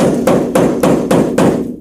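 Five loud, evenly spaced knocks on the door of dorm room 134, struck by a Texas Tech campus police officer at a steady, unhurried rhythm with a dull, heavy thud, then silence with no answer. No voices.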